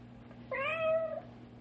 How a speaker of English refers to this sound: we'd better get the cat out from between the walls. Between the walls? Yes. Oh. I can tell by the muffled sound of his voice that he's got himself down inside the wall.